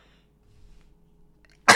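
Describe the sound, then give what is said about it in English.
A single sudden, loud sneeze bursts out at the very end after a quiet stretch of faint low rumble and a soft intake of breath. “Oh, apologies, gents and ladies, for that sneeze.”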